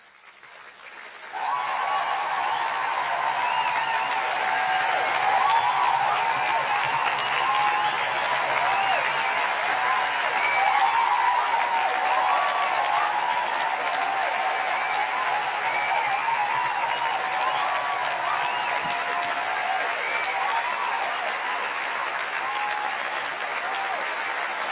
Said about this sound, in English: Can we give her a round of applause really quickly?